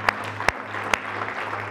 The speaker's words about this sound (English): Come on, let's give Jesus another hand clap of praise.